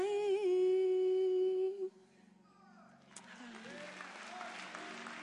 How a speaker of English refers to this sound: Come on, we can do better than that. Get a lot of hand clap.